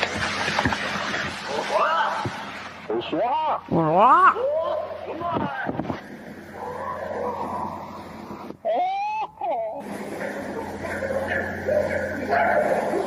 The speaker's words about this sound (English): It almost sounds like barking. Yeah, it's like barking and then it's like monkey.